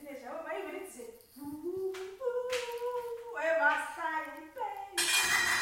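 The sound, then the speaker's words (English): A voice talks through most of the stretch, then a loud, brief, sharp clatter of pots and dishes bursts in at the very end. “That's the sign of the pots.”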